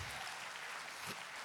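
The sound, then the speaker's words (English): An audience claps their hands together during a New Year sermon, a dense, steady wash of many overlapping claps with no clear beat, holding an even loudness throughout. “Clap your hands.”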